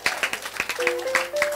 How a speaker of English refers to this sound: If you're a lady here, you're in a relationship, and you're proud of that relationship, stand up. Praise God. Amen. Amen. Let's clap for them. They are bold.